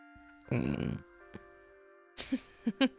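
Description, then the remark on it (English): A single loud, throaty burp lasting about half a second, followed by a pause and then some brief murmured vocal sounds. “I have to burp.”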